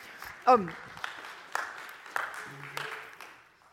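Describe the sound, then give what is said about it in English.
A slow, scattered clap from an audience: about half a dozen sharp claps spaced roughly half a second apart, with a brief vocal whoop near the start and faint murmuring underneath. “I know it feels like a slow clap.”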